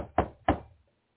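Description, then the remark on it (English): Two firm, fairly loud knocks on a yellow door at an exhibit, spaced about a third of a second apart, each with a short hollow decay, then silence. “he sees people going up to it with tool belts on and knocking on the door”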